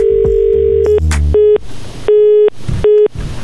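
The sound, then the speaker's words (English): A loud, steady telephone tone sounds after a contest caller's line goes dead during a call-in on Pulse 95 Radio's Halftime Show, then breaks into short repeating beeps separated by bursts of line noise and static, with no voices. “Well, that first person got so excited, the phone went dead.”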